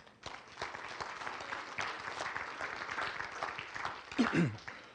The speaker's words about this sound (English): If you love the Lord, give Him a hand clap.